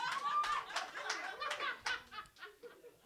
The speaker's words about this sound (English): I'm just saying, the married people in the room are clapping very loudly to that comment.